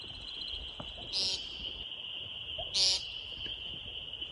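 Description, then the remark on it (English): Two brief, high twittering bursts of a woodcock (timberdoodle) in flight, spaced about a second and a half apart, over a steady high-pitched insect drone and faint background noise. “If you've never heard a timber doodle, here's a clip from Timber Doodles in Flight.”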